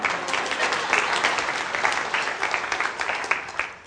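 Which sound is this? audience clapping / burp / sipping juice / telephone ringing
audience clapping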